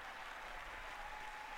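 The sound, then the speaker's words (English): Steady, dense applause from a large group of politicians in a chamber, clapping after the congratulation of Hakeem Jeffries as the new leader of the House Democrats, a continuous wash of many hands clapping at an even level with no talking over it. “Yes, this is literally when they all, as Mort would say, a circle jerk, where they all clap for each other.”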